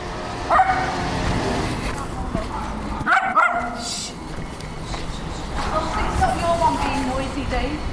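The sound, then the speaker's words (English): A dog barks in short bursts during a live street broadcast, a few yips near the start, around the middle and again later, over steady outdoor street noise with a passing car. “Typical dog. No concern for a live broadcast.”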